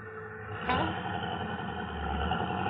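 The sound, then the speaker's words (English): A car engine idles while stuck in traffic, with a steady low rumble and faint clatter, holding even, with a brief brighter swell near the start. “It's the traffic, lady.”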